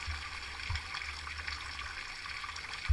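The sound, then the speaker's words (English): Water from a spring pours steadily into a small vial, a continuous bright splashing hiss that stays even for a few seconds, with a soft low bump near the end and no voices. “The vial is filled with the silver sparkling water of the shimmering spring.”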